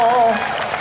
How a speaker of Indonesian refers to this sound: Mana tepuk tangannya?